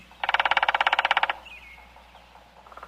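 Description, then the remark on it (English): A woodpecker drums on a tree with its beak, looking for bugs under the bark, in a fast, even burst of about twenty sharp knocks lasting roughly a second, loud, followed by faint bird chirps in the quiet background. “That is a woodpecker knocking on the tree.”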